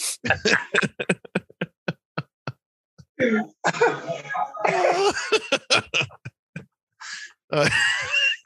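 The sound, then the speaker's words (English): A rapid series of short, sharp coughs and throat-clearing bursts, fairly loud, gives way to strained vocal sounds with a few more scattered coughs mixed in. “Tell you what, I'm going to need is a cough drop.”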